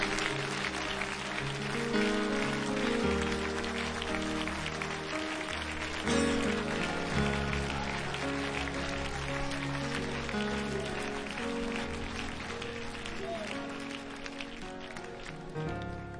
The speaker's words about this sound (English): Why don't you give him a hand clap of praise in here right now?